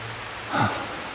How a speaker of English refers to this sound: Whoa, the rain's coming down now.